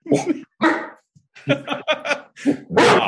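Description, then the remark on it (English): A person imitates a dog's alarm bark: a series of about six short, loud, gruff woofs in quick, uneven succession, with no other talking. “did you ever boof to Freddie to see what he did? You know, the alarm bark.”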